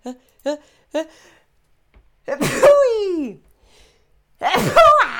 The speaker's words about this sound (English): Oh, I'm going to sneeze.